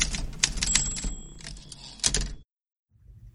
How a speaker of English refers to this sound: So Luigi, hit the typewriter and we'll move on to the next one.